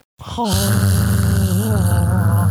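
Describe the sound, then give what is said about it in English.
A voice imitates the buzzing noise the Dick Rocks make in the books, a steady droning hum held loud for about two seconds with a slight wavering pitch, with no other sounds around it. “She describes the buzzing sound.”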